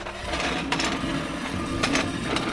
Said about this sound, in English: This is a kitchen timer.